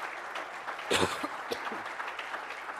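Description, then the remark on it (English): An audience at a service claps steadily for the Lord throughout, a dense wash of hand claps with a brief swell of cheering voices about a second in, then even applause to the end. “Well, let's give the Lord a good hand clap if you believe that.”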